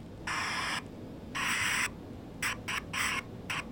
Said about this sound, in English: At a workbench in a back room packed floor to ceiling with wires, bolts, and other electrical supplies, the lab's team shows off what it's been working on, an electronic puck that makes a pleasant white noise, staticky sound.